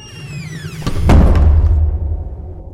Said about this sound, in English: Great, because this door is really heavy.